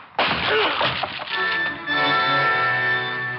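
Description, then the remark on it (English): A locked plywood door is smashed open with a man's head: a sudden loud crack, followed by a second of splintering, crunching debris, then a steady ringing tone lingers underneath. “Seymour would be pulling plywood out of his scalp for the next week, but it got us in.”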